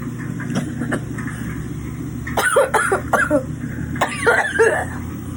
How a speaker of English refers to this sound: but when he cooks, he always makes me cough. Oh, wow. Because he cooks everything on super high. Let's see. It smokes in here a little bit.